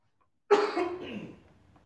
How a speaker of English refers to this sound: I've had a slight cough after the Santa Ana winds was blowing here in Southern California. It's a dry cough, and so, but other than that, you know, cough takes a moment to leave the system.